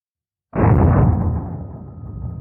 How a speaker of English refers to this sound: Let's go to the frangible. Here we go. This frangible now, this will come apart. It'll shatter into many pieces, and you'll see these where these pieces, they go off inside the gel.